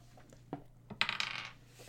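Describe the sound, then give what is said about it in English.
Dice roll across a table during a tabletop role-playing game, rolling for two dogs' attacks: two sharp clicks, then a bright, rapid clatter of bouncing taps that fades out within half a second. Fairly quiet, with no voices. “Let me go ahead and attempt to roll.”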